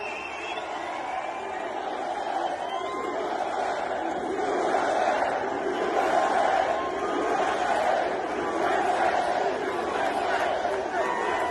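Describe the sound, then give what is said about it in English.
A large crowd at an NRA event with Donald Trump roars and cheers steadily for over ten seconds, a dense wash of many voices with shouts rising in the middle, loud and continuous throughout. “I don't even know, but the crowd sure did.”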